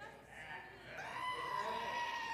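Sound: goat bleating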